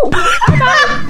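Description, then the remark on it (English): A voice playfully imitates a dog's bark, a short yelp followed by a drawn-out, growly vocal noise, fairly loud, with a giggly edge. “Now we're just making noises.”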